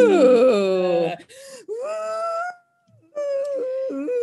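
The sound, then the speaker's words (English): Voices imitate howling wind with long, wavering moans that slide up and down in pitch, coming in three loud bursts with brief gaps between them. “And then he goes outside and is windy. So much wind.”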